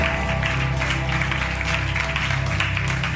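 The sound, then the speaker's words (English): A church audience claps steadily in celebration as people come to the front for prayer, a dense wash of overlapping hand claps that stays loud and even throughout, with a low sustained tone droning underneath. “The clapping is because we're celebrating.”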